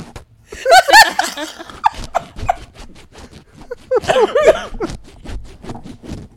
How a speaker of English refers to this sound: That was some dedication. One of those zippers got to be good.